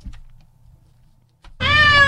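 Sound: cat meowing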